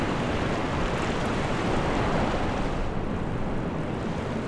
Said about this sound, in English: Like any coastal Alaska town, Yakutat attracts thousands of tourists each year looking for their next big catch. But while most of them are looking for halibut and king salmon, a select few are looking to catch something else, waves.